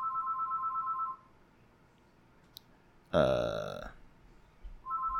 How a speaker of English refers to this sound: Oh my god, was no one answering the phone?